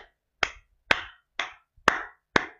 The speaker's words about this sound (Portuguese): Uma salva de palmas para o segurança, mano.